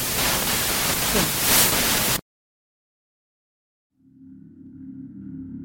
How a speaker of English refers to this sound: At this point, the recording became too degraded or suffered too much interference to be of use.